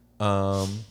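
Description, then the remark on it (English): A single sneeze: a loud voiced, rising "ah" that breaks into a sharp, hissy burst, heard on its own with nothing else around it. “Bless you.”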